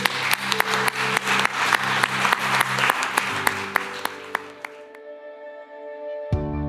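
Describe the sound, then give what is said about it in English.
A crowd at a LifePoint Church sermon applauds those who prayed, steady sharp individual claps over sustained keyboard chords. The clapping thins out after about five seconds, leaving the music ringing alone before a new chord enters. “Can we give those that prayed that a huge round of applause?”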